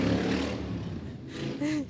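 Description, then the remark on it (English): A motorcycle engine rumbles loudly and steadily outdoors in downtown Canton, its low growl rising into a brief higher-pitched rev toward the end. “And motorcycle's out today.”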